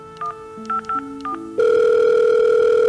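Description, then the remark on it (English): A phone being dialed in the morning to call an aunt: a quick series of short keypad beeps over a low stepping tone, then a loud, steady electronic telephone tone takes over and holds. No voices. “he's running late and effortlessly vaults the length of the room to the phone. He calls his Aunt May.”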